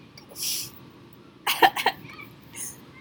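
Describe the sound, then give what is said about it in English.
A person coughs into their arm: a quick cluster of three harsh coughs in the middle, framed by softer breathy exhales before and after, with no talking. “You just coughed into that.”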